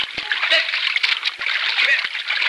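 Water splashes and churns steadily as a man goes under the water after a girl who has gone under, a continuous rushing wash broken by a few brief thuds, with no clear speech over it.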